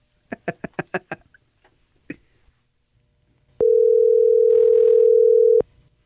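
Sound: telephone dial tone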